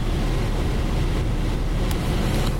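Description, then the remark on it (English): A loud, steady roar of a microphone scraping along a road surface behind a moving car, a dense rumbling grind with a couple of brief clicks near the end and no voices. “Testing microphones that we're dragging on the ground behind the car.”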